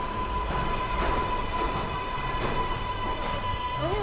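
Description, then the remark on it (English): Steady, loud rumble of a subway car in motion at night, with a constant high whine running throughout and a brief rising squeal near the end. No one speaks. “One night, they run into each other on the subway and have a moment of vague recognition and small talk.”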